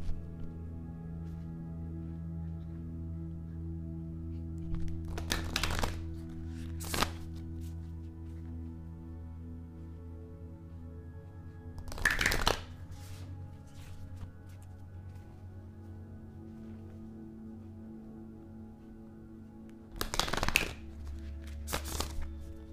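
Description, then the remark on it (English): A crystals oracle card deck and a self-care oracle card deck being shuffled in several short bursts of riffling and flicking, separated by pauses, over a steady low hum with no talking. “Okay, let me shuffle the crystals deck, and I'm going to shuffle the self-care deck.”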